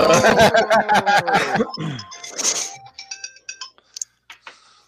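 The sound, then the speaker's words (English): An alarm goes off during a panel, signalling giveaway time, with a loud, rapidly pulsing ringing for about two seconds, then trails into a few scattered, fainter high chiming tones before falling quiet. “That's so funny that he prepped us for the alarm.”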